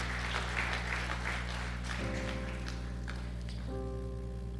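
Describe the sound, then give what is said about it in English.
An audience claps steadily for about two seconds in praise to God for His word, then the applause thins out while sustained keyboard chords hum underneath and shift to new notes twice. “Let's give God a wonderful clap, praise for His word.”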